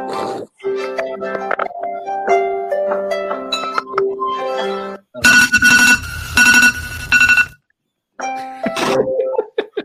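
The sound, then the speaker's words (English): A bright, melodic Android phone alarm tune plays in stepping tones for several seconds, then gives way to loud, harsh, squealing bursts that cut in and out, followed by a brief tonal snippet. “Android people, when their alarm goes off.”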